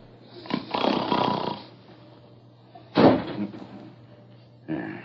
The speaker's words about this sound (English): What was that? Sounded like the wind caught a hold of a door and slammed it shut.